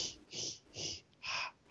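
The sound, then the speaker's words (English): A voice imitates Darth Vader's mechanical respirator breathing: three hissing, rasping breaths in a steady in-out rhythm, moderately loud, with no other sounds. “And, yeah, and there's just this iconic breathing versus the...”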